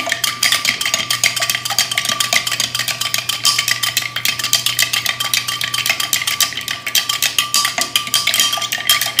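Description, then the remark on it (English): A spoon stirs ice cubes in a glass of cocktail made with Knob Creek and a couple dashes of Angostura, making a steady run of rapid, bright clinks and rattles that keep going without pause, with a faint low hum underneath and no one speaking. “So stirring with the ice cubes and the spoon, this is doing the same thing as you would if you were to muddle the cocktail.”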